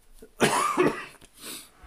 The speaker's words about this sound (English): Gosh, cough.